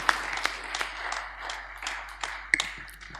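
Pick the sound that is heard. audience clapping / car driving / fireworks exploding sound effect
audience clapping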